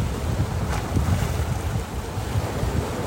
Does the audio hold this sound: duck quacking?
no